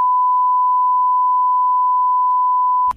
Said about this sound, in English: It's the longest beep we've ever played.